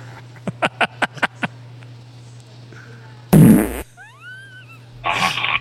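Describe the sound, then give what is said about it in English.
A quick run of six short, sharp farts, then a long, loud, rumbling blast, a few squeaky whistling tones, and one more raspy burst to finish, with no talking. “The farts are still going.”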